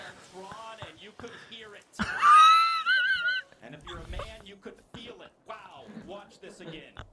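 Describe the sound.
A French skier who slammed his groin into a slalom gate at high speed lets out a loud, drawn-out howl of pain that climbs in pitch and wavers for over a second, with people talking before and after it.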